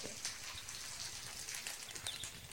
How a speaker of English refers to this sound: Can you stop that dripping?